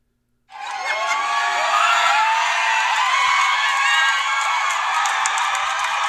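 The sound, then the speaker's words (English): A large crowd of abortion advocates in Ohio cheers loudly and steadily on finding out abortion was legalized, a dense wall of high-pitched shouts, whoops and screams with scattered clapping, starting abruptly and sustained for several seconds without letting up. “These cheers are from people who found out that abortion was legalized.”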